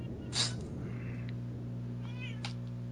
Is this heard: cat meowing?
yes